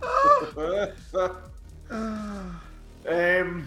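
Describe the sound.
A voice imitates chickens clucking in a few short, warbling bursts with sliding pitch, fairly loud, separated by brief pauses.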